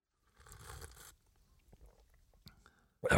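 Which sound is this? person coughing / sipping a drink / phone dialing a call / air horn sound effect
sipping a drink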